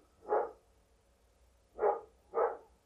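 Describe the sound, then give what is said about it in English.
Three sharp dog barks, a single bark followed after a pause by two quick ones close together, clear with no talking. “Your dog wants to talk to you.”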